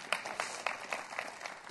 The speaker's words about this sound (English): I got a couple people clapping for me. They see that vision.